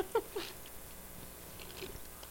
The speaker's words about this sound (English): Aren't you guys glad in Radio Land you can hear us chewing and eating?